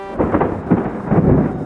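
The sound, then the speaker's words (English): A deep, loud rumble of thunder following a lightning strike rolls continuously, swelling in low, booming waves with a faint rain-like hiss underneath. “Thunder is a sound that comes right after a lightning bolt strikes.”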